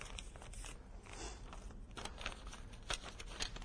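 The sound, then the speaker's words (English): Rustling and crinkling of a piece of paper being folded into a paper airplane, with a steady stream of soft crackles and a few sharper creasing snaps, no voices. “I have a starting ingredient, paper. And if I make a paper airplane, if I can remember how, I should know how to do this.”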